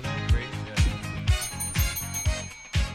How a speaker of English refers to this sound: Oh, the bell is back.